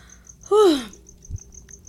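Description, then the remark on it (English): A cricket chirps in a steady, rapid pulsing rhythm throughout, faint in the background, briefly overpowered by a loud, descending whine-like squeal and a low thump. “That cricket was biting me.”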